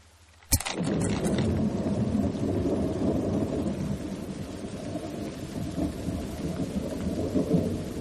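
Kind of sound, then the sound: nature, rain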